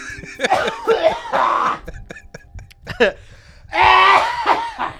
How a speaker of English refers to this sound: Ultimate mic check. Just cough right into it.